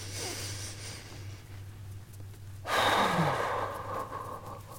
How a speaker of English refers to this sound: Breathing a bit.